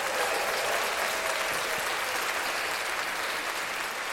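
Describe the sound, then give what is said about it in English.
An audience applauds the announcement of a new series called Urban Exclusives, a dense wash of many hands clapping at an even, sustained level for the full length with no voices standing out. “Clap that up.”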